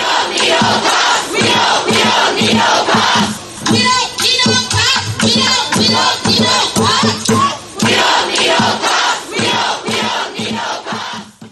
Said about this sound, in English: On Saturday, a large contingent of people on foot and in cars protested outside Bowser's home in Northwest D.C.